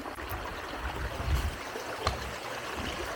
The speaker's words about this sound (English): You probably hear the water behind me. Can't see it very well, but the waterfall down there. Over there. How cool. Pretty cool.